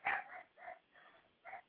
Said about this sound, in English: As you can see, my dog is thoroughly thrilled over this whole situation.